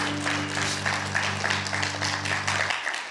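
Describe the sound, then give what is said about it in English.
A church audience gives the Lord a hand clap of praise after a prayer, dense, sustained applause, steady and fairly loud, with a low steady hum beneath that cuts off near the end while the clapping continues. “One more time, can we give the Lord a hand clap of praise?”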